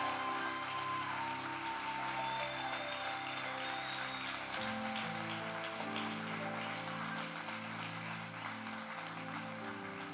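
An audience claps steadily for the full ten seconds in appreciation as a man comes up to join the pastor on the platform, a dense, even patter of hands layered over sustained chords from an organ or keyboard playing underneath.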